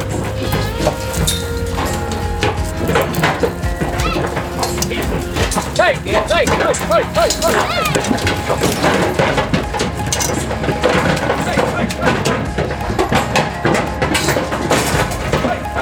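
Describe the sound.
Cattle being herded through metal chutes onto a truck, pushed forward with cattle prods and sorting paddles: a steady, busy clatter of hooves and gates, with an occasional low moo and indistinct human voices calling over the noise.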